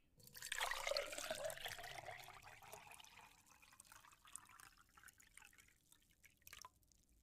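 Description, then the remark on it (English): Tea is poured into a cup in a steady stream, the tone rising as the cup fills, starting with a splashy burst and trailing off after about six seconds. “Here, let me pour you some tea.”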